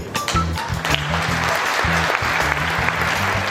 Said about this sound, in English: Oh, yep, wake up and clap.